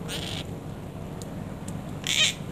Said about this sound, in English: Their call is more raspy than most other parrots, and this recording from Dave in Kingston just shows it off.